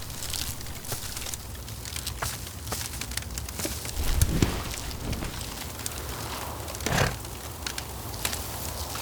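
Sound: crackling fire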